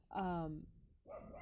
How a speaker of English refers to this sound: But so this will, and you guys hear the dog in the background. Yeah, sorry.